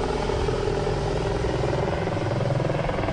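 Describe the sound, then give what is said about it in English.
Two low-flying military helicopters heading this way make a steady, loud rumbling drone with a throbbing low-end pulse from the rotors, continuous for the whole stretch with no one talking. “These helicopters coming towards us.”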